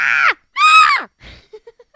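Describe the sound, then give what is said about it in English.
A person lets out two loud, high-pitched screams in a playful horror-movie style while announcing the film Scream, each one sliding downward in pitch, followed by a few faint breathy sounds. “All the dogs just jumped up, terrified.”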